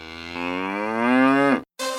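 A cow moos loudly, one long drawn-out low call that rises slightly before breaking off, followed by a brief silence and the start of another moo.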